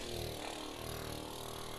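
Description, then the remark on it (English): A voice imitates a propeller plane engine with a steady, buzzing drone, sustained evenly for about two seconds at a fairly loud level. “Prop means propeller. You know, the planes that go...”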